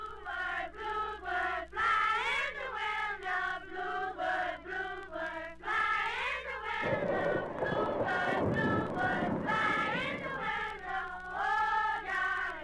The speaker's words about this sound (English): In the village, children play.